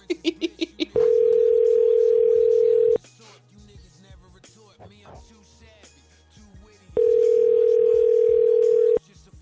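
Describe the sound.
A telephone line ringing tone on a call to a home number: two loud, steady mid-pitched tones about two seconds each, separated by a four-second gap with faint voices talking, preceded by a rapid series of short beeps.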